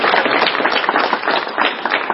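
A crowd breaks into loud, steady applause, many hands clapping at once in a dense, crackling wash that holds at an even level with no voices.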